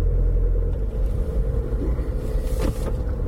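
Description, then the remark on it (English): A front-wheel-drive automatic car's engine rumbles low and steady as it pulls away from a standstill, with a brief hissing surge partway through as a wheel spins when the throttle is touched. No one speaks. “I touched the throttle there and it was off with a spin.”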